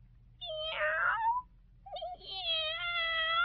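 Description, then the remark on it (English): Two drawn-out cat meows, fairly loud, the first wavering and rising, the second longer and steadier, separated by a short pause over a faint low hum. “Now listen to the tiger.”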